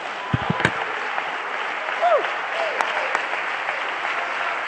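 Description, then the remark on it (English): A church audience claps and shouts unto God, a dense, continuous patter of applause with scattered voices shouting and whooping above it, one rising and falling cry standing out midway. “I wish somebody helped me preach a little bit in this house and clap your hands and shout unto God like you know it's true.”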